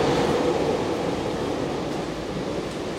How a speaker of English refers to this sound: So this is our train, we'll get on board.